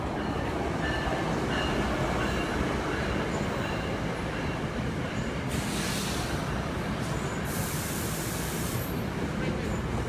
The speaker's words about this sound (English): Another train, of course, so one moment. There it is.